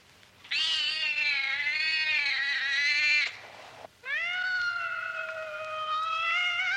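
A cat yowls loudly in two long, drawn-out wails, the first wavering for nearly three seconds, then a brief pause before a second sustained, rising cry.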